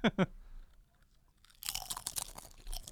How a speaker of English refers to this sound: Obviously, it's a chip, so it's going to be crunchy. Snappy.